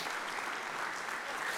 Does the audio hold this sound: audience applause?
yes